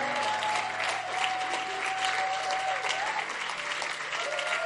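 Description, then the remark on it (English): An audience applauds steadily for people going back to their seats, a dense wash of many hands clapping at once at a constant level for several seconds with a faint sustained tone underneath. “Go back to your seats. Clap for them.”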